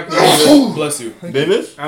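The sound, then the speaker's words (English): A loud sneeze bursts out with a sharp, breathy rush, then one or two shorter vocal bursts that sound like a voice trailing off or a follow-up sneeze. “Bless you. Anthony Davis is number 7.”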